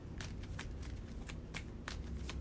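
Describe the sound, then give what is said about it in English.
A deck of game cards being shuffled after the Art Student card is picked out, a run of quick crisp riffling bursts repeating at a steady pace over about two and a half seconds, with no talking. “Milan Christopher is kind of late, so let's choose the Art Student and shuffle the rest.”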